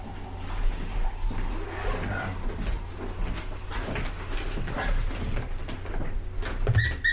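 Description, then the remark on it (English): A dragon-shaped squeaky dog toy lets out a short, high squeak near the end, rising above steady background rumble and rustling handling noise. “Oh, he still squeaks.”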